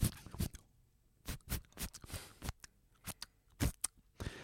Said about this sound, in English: You're gonna shuffle your cards.